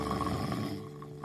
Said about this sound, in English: The big bear, who had hibernated months ago, was still sleeping and snoring loudly. The little mouse went to him one day to wake the bear up, because he could not sleep all winter due to the bear's noisy snoring.